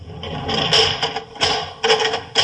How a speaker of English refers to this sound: The door. He's bolted it. Even you can't open it now, Holmes.